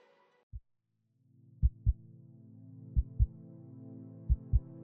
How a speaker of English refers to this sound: Heartbeat. It's crazy how something so simple can signal the beginning and the end of life.